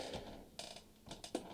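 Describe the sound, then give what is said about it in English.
A chair creaks in several short, uneven bursts of strained groaning and squeaking, fairly quiet, with no one speaking. “My chair's falling apart.”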